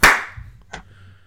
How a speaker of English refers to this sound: You're recording, yeah? Oh, yeah. Yeah. All right. Want to do a clap right now? Yeah. Yeah. Right. 3, 2, 1.